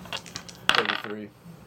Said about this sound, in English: I rolled a 50-something, and I was just tossing dice.